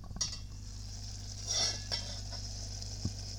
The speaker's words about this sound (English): All right, and some bubbling of pasta.